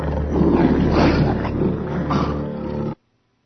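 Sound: tiger roaring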